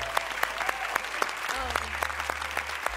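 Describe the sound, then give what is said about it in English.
A crowd claps steadily for a few seconds, the sharp hand claps blending into a continuous wash of applause, with a few faint whoops and cheers rising over it. “Can we just cheer for”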